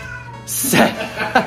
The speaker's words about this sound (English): Butch is, he's very vocal. He's telling you to subscribe and like. That's what he says whenever he meows.